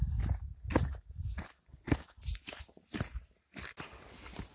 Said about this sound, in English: So what you guys just heard there was me twisting my ankle pretty bad. So now I'm limping back to the truck. Ooh. I don't think I quite sprained it, but man, I came within a finger's breadth of spraining it.